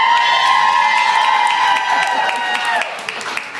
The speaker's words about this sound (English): Yeah, it should be noted that Augie gets the biggest cheers. Yeah. Anything four-legged that doesn't talk back to us, we're all about it.